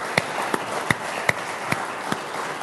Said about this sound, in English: And so to the men and women, I don't want to name because I don't want to miss people, but just the men and women of our church, just hand clap to you guys. Thank you.